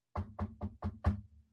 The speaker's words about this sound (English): Then there's a knock at the door.